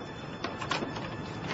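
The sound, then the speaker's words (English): A door opens with a steady, low mechanical rumble and a few soft scraping bumps midway, fairly quiet, with no voices. “It's opening.”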